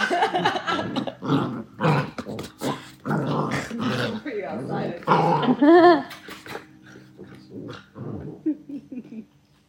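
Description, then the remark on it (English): A puppy growls and yips in busy, overlapping bursts, with a run of sharp, high-pitched yelps in the middle before the noises taper into softer grumbles. “Deep breaths, puppy.”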